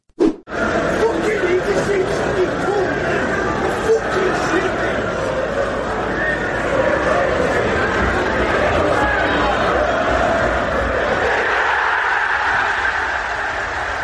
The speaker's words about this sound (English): It's just, again, more crowd noise, but there's just a background gobshite which really makes this for me.